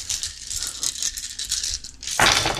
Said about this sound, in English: You got 0 rollover, so roll 15 dice to damage him. This is what 15 dice sound like.